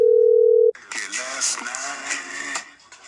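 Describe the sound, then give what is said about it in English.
A loud, steady telephone dial tone hums at one pitch for under a second as the Bone Zone radio show calls a listener back, then cuts off abruptly, followed by a muffled, phone-filtered voice talking. “Okay, we'll call this guy back.”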